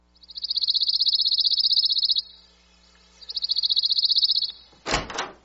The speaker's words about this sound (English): This is a song I love hearing, the Pine Warbler.